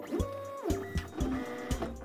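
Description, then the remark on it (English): A computer printer runs steadily, its mechanical whirring and whining tones broken by rhythmic clunks roughly every half second as the paper feeds through, fairly loud with no voices. “like when I make it so that his computer printer no longer prints paper, but only cheese.”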